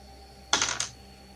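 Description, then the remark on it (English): A short burst of bright, hard clattering, a few quick clicks and rattles over about half a second, like dice tumbling across a table, fairly quiet, with no voices. “Damn dice.”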